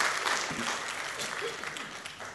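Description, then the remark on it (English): An audience bursts into sustained applause as a clap offering to God, many hands clapping together in a dense, steady wash that fills the room, with faint voices mixed in. “Can we give a big clap offering to God?”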